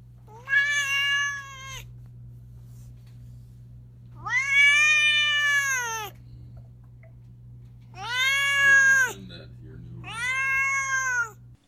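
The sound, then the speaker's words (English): A cat named Duarte meows four times, loud, each meow long and drawn out with short pauses between, over a faint steady low hum. “My cat's going to tell us what he thought about the book.”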